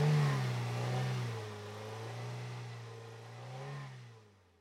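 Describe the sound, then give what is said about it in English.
A car engine revs hard and accelerates with the gas pedal held down, its pitch rising and falling in a steady, continuous roar before fading out at the end. No voices. “From starting the car until I hit the lawn, my foot did not leave the gas pedal.”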